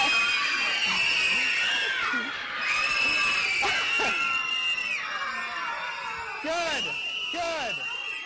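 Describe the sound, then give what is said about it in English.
A large crowd of children screams at full volume, many high-pitched voices overlapping in a continuous, piercing roar with occasional rising and falling shrieks that stay loud throughout. “I mean, it's like, how bad do you guys just want to scream at the top of your lungs?”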